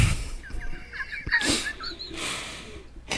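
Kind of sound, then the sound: animal, chicken clucking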